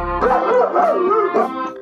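A dog barks in a few drawn-out, whiny yelps that run together over a couple of seconds, close and fairly loud, with no talking around it.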